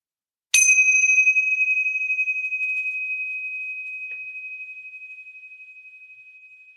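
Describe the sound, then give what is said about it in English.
A single bright metallic chime from a set of meditation chimes is struck once before a meditation and rings out with a clear, pure tone that slowly fades over several seconds in an otherwise quiet space. “So I'm going to go ahead and chime those and just set the intention that we're going to clear the space, and it's going to be a really nice meditation.”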